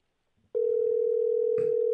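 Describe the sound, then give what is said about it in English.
A telephone dial tone, heard while a phone number is being dialed, starts abruptly after a brief quiet moment and holds as a steady, loud, low hum, with a short click-like blip partway through. No one speaks. “We gotta beep out his number, by the way.”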